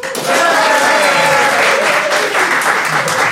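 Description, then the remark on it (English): An audience votes for volleyball as the better origin story by breaking into loud, steady applause that starts almost immediately and holds for several seconds, a dense wash of clapping with a few voices mixed in. “if you think volleyball was a better origin story, applaud now.”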